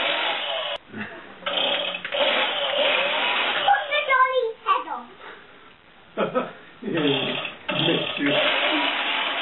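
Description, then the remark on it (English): A Fisher-Price toy chainsaw buzzes and whirs in a harsh, steady electronic drone, cutting out briefly a few times before revving back up, with a child's voice breaking in midway. “And not only that, they say, oh, what's my chainsaw toy?”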